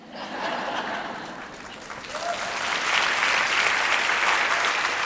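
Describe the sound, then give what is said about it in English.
An audience breaks into steady applause, a dense wash of clapping that swells louder partway through and keeps going, with a few chuckles mixed in. “I gotta be honest, I wish that didn't get an applause.”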